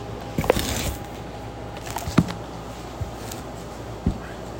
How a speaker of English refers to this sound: Let me get a sip of soda water.